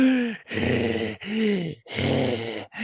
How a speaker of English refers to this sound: The Mouse King finishes his meal and stares, drawing angry, panting breaths.